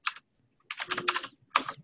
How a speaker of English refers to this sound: I can't see where you're typing, but I presume you're creating a new account?